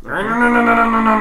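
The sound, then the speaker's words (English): A voice imitates a chainsaw, used as a prop at an improv show, with one loud, sustained, buzzy drone at a steady low-mid pitch that swells slightly after the start and holds for over a second. “All right, I have my chainsaw.”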